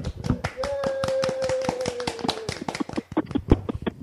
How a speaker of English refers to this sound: I think we should put our mics down and applaud these wonderful people. Let's give them a hand. All right, we'll just do that real quick.